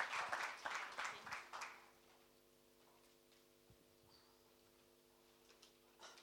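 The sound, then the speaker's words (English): A short burst of audience applause welcoming a speaker, dense overlapping claps that fade out within about two seconds, leaving quiet with a steady low hum. “Let's give her a warm round of applause as we start.”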